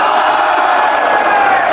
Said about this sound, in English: Those in favor say aye. Aye.